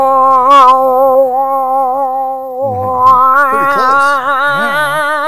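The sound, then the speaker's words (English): A person imitates a cow's moo in one long, loud, droning call, steady and low-pitched at first, then wavering and bending in pitch toward the end. “we let out a cow call”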